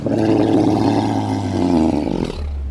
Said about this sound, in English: A horrendous sound echoed throughout the night, like a giant organic pump wrenching something from the depths.